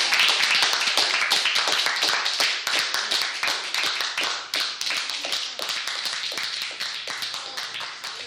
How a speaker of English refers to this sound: Give me another round of applause.